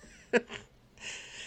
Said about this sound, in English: Can you hear my cat? That's Bangle. He's looking for a relationship too.